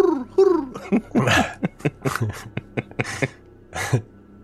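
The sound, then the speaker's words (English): A person imitates a wood pigeon's call with a couple of low, throaty cooing notes, then a rapid run of clicks and breathy, gargling bursts, fairly loud and with no other talk. “I assume you do your standard call of the woodland or the the pigeon. Yes. Common wood pigeon.”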